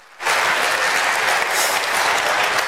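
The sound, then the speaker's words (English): A crowd gives one more round of applause for graduates: loud, sustained applause after a brief quiet start, dense clapping holding steady to the end with no one speaking. “Give it one more round of applause for all of our graduates.”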